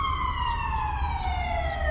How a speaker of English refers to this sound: Oh, now we have sirens. Yeah, now we're living beams. In L.A. 7 go down that way and 6 come back this way. Yeah, all day.